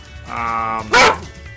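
A dog lets out a drawn-out whining yelp, then a single sharp, loud bark, with no talking over it.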